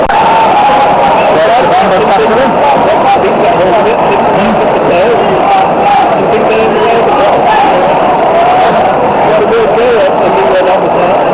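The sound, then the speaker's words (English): A large stadium crowd at a football match murmurs steadily just after a goal is scored, a dense, unbroken wash of voices with no cheering peaks, filling the whole stretch at a fairly loud, even level. “A murmur in the crowd more than anything else.”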